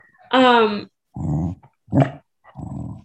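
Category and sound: animal, dog growling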